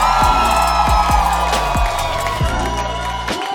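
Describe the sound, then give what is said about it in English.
An audience cheers and whoops loudly and continuously, with several high shouts rising and falling over a dense wash of voices, as single and available people are asked to make some noise. “So I need all the people in the room to make some noise if you are single and available in the room.”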